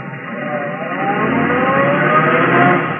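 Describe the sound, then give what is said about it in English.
A car engine revs up on a street, its pitch climbing as the car pulls away from halfway down the block to follow a cab, a steady throaty roar growing slightly louder over about three seconds with no voices. “By the time Sally Marlin would make it to the lobby in the street, I ought to be ready for her, in my car halfway down the block.”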